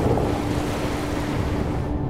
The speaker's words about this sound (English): Ocean Beach is a very dangerous beach. And it's considered one of the most dangerous beaches because of the rip currents on the beach. See the drainage into here, the holes, the shallow area? The wave's going to come up in here